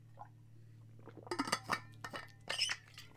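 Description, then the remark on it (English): Glass clinks and clatters in a short burst of bright, sharp knocks as someone gets some water, followed by a brief splash of liquid being poured, all over a steady low hum with no talking. “Let me get some water here really quick.”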